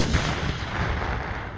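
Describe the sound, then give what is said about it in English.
A German Leopard 2 tank's 120mm smoothbore cannon fires one heavy, booming shot at a gunnery camp on the Sennelager Ranges in Britain, followed by a loud, rolling rumble that slowly fades off across open ground. No voices are heard. “On Britain's Sennelager Ranges, a German Leopard 2 unleashes its firepower.”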